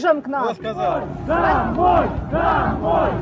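A protest crowd in Kherson, Ukraine, waving Ukrainian flags, shouts together at Russian soldiers in loud, rising chants such as fascists, go home, occupiers, many voices overlapping in rhythmic bursts that swell and fall every second or so, with no single speaker standing out.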